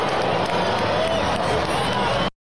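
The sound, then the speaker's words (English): A stadium crowd in Toronto boos pitcher Bass as he comes to the mound, in a loud, unbroken roar of many voices, holding steady for about two seconds before cutting off abruptly. “As he's getting the booed. Are they booing? Yeah.”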